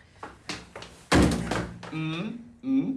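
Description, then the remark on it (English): A foot kicks a wooden door once, trying to kick it down, giving a single dull thud after a few light taps, followed by voices making drawn-out sounds. “It is the weakest kick of a door.”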